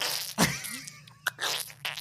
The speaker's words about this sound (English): Yeah, hold on, I gotta clear my throat.